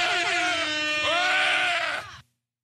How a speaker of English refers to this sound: Yelling at the bear to stop murdering that animal in her backyard.